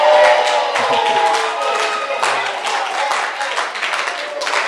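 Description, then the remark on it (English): A church audience claps for the Lord steadily and loudly throughout, a dense wash of hand claps mixed with raised voices cheering and calling out, with no pause in the sound. “Give the Lord a clapping offering.”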